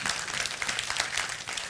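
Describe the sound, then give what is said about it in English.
A crowd claps steadily, a dense, crackling wash of many hands at a fairly even loudness from start to finish, with no voices heard over it. “Now, for those that just clap, I'm kind of curious if you've ever linked the way the church has talked about it with the way the school has talked about it.”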